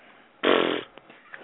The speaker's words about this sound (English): I just took a drink for those of you who wondered what the glubbing was